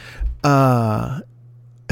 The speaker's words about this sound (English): Now you got my voice fucking yawning. God damn it. The yawns are coming. I need to stop.